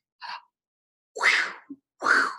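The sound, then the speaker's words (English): A voice imitates Cupid's arrows being shot for Valentine's Day: a short soft lead-in, then two loud breathy whooshing thwacks, each with a brief click between them, with no talking. “Those were Cupid's arrows because it's Valentine's.”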